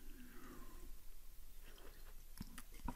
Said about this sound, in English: I think, let me just have a sip of coffee here.